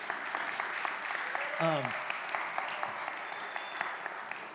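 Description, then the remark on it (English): On Father's Day, an audience applauds its fathers in a steady, dense patter of many hands that holds for several seconds, with one brief rising vocal whoop breaking through early on. “And if you're not a father, everybody give those people a round of applause.”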